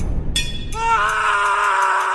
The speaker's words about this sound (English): Now, we get very excited when we hear that little scream